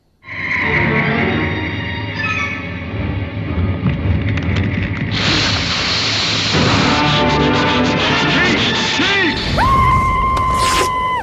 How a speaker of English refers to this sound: But you'll hear his reaction, and then you'll hear this, how do you describe it? Squelching, breathing noise? I don't know how to describe it.